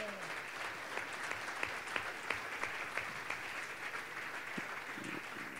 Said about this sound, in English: Can we give him a round of applause as well?